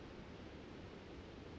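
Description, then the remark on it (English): A soft, continuous wash of ocean waves in the background, steady and hiss-like with no distinct breaks, heard faintly, with no voices present. “Just as the waves are washing over in the background.”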